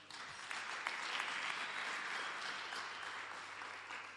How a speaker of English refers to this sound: I thought you would clap.